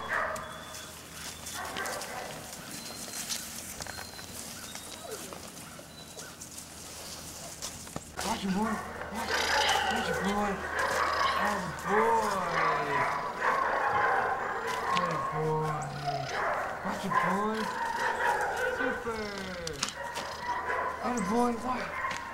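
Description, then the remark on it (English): A puppy yaps and yips in quick, excited bursts while playing tug, with high whiny barks repeating through the second half over muffled background voices. “Let the puppy win.”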